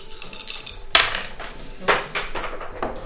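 Small hard dice, including a d12, clatter onto the floor during a tabletop game, two sharp clicks about a second apart followed by lighter tumbling rattles as the die rolls under something. No voices are heard.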